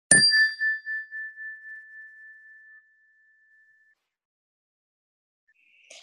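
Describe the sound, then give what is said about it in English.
A single clear meditation chime is struck once to begin a meditation and rings out with a pure, sustained tone that slowly fades over a few seconds, followed by near silence. “We'll begin the meditation, the ring of the chime, and we'll end the meditation with the ring of the chime.”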